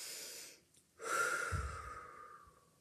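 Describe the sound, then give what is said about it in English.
A breathy inhale through the nose, a brief pause, then a longer, slightly whistling exhale out through the mouth that slowly fades, taken with arms raised overhead during a guided stretching exercise. No one speaks. “And we're just breathing through the nose and out through the mouth.”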